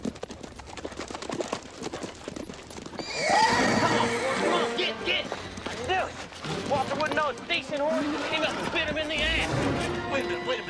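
Several horses neigh and whinny loudly and repeatedly at close range, their shrill calls overlapping, while hooves clip-clop underneath and the scene grows busier after a quieter start.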